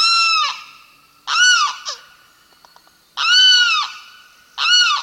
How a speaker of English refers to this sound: A male limpkin has awakened. This relatively tall bird, whose dark brown feathers are streaked with white, stretches and calls again.